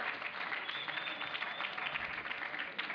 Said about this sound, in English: A round of applause for our brother. I think that's pretty impressive.